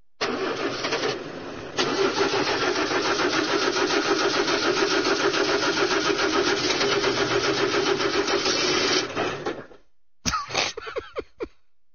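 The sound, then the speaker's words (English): The engine of a two-wheel cycle idles steadily with a loud, rough, rhythmic rumble for nearly ten seconds, then cuts off abruptly, followed by a few brief, muffled bursts of sound. “You've been sitting here for a week with that engine idling, Snakemannn.”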